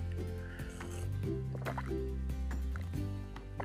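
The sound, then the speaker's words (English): Liquid sloshes and drips in a glass of sweet iced tea, with small plops and clinks scattered over a few seconds above a steady low hum. “There's nothing better that tastes more savory than a nice glass of sweet iced tea.”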